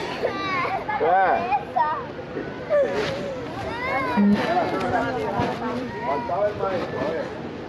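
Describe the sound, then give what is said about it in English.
Several children wail and sob for their parents at once while being mocked by Border Patrol agents, their high, strained voices overlapping continuously and loudly, with a murmur of other voices underneath; from a tape published by ProPublica. “The audio of children screaming and sobbing for their parents while being mocked by Border Patrol agents went viral.”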